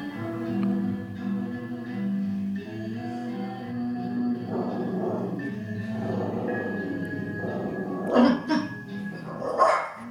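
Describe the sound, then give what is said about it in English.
A dog barks repeatedly, with rough, drawn-out barks in the middle and two sharper, louder barks near the end, all over a steady humming background. “Don't like other dogs.”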